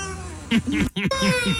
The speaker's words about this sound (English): That's the dog crying. Really? Oh, my gosh. Well, were they at Starbucks and it was taking too much time? No, they're at the car dealership. Oh, yeah. He doesn't like car dealerships. He had to wait.